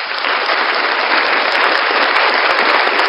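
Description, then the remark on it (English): A show audience claps steadily as a special guest is welcomed, a dense, continuous wash of applause, loud and even throughout with no voices on top, a rapid patter of many hands that never lets up. “Please welcome to the show, big round of applause”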